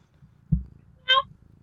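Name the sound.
cat meowing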